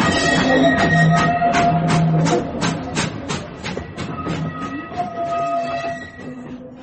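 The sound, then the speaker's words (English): A steam train pulls away, its rhythmic chuffs repeating steadily over a sustained whistle-like tone and rolling rail noise, loud, then slightly easing as it gathers motion. “Looks like we're off.”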